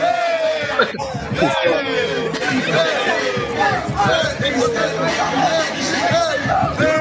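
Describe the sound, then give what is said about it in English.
A loud crowd cheers and shouts in a recorded video posted on World Star Hip Hop, over dense overlapping chatter, with whoops and yells rising and falling continuously for several seconds. “Why are you cheering this on?”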